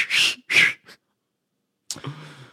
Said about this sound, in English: Every child's first whistle.